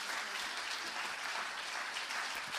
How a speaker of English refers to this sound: Yeah, give him a huge clap. Yeah, yeah.